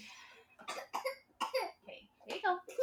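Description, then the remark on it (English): A toddler girl coughs on juice in several short, wet bursts, a few rapid coughs grouped together with brief pauses between them, fairly loud with slight sputtering. “She wants more as she's coughing on juice.”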